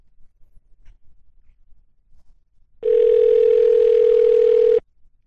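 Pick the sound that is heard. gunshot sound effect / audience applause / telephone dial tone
telephone dial tone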